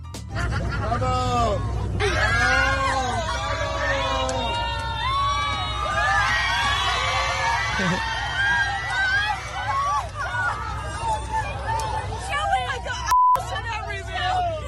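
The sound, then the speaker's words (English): Passengers on an EasyJet flight out of England cheer and whoop loudly as a flight attendant opens the bathroom door on a couple, many overlapping voices shouting and laughing together over a low steady engine hum, with the excitement continuing throughout. “They're cheering for the couple.”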